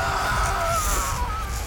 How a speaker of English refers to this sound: The gas finally wears off as the dentist gets to work, and all I can do is scream.